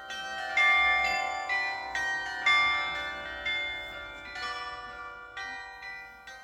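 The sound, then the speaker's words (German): Church carillon bells ring out a melody, successive bright struck tones with long ringing overtones overlapping one another in a steady sequence, heard clearly with no voices. “wurden die Töne immer lauter und ich hörte ein wundervolles Lied. Es war das Glockenspiel der Kirche.”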